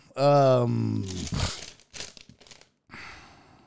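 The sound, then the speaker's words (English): A drawn-out voiced hum or groan gives way to several bursts of crisp plastic crinkling as a Halls cough drop wrapper is twisted open, with short pauses between the rustles. “I'm going to go eat a Hall's cough drop.”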